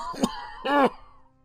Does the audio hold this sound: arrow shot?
no